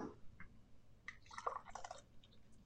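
Beer is poured into a glass: a soft gurgling and splashing of liquid that comes in short uneven bursts over a few seconds, with faint fizzing and trickles and no talking.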